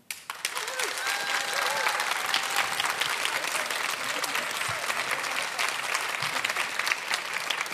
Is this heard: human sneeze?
no